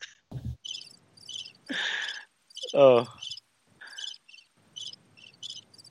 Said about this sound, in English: that's crickets. That's exactly that's what I hear. That's exactly what I'd hear if I asked for it.